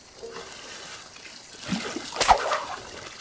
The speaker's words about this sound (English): Oh, I fell in the water.